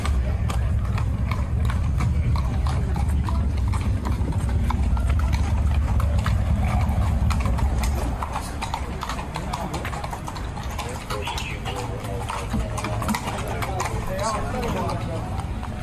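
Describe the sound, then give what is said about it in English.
Hooves of mounted police horses clip-clop on a hard street in a quick, steady run of sharp strikes. Muffled voices and a low traffic rumble sit underneath, and the rumble eases about halfway through. “First off, on the heroes list, huge shout out to this guy giving the mounted police the business.”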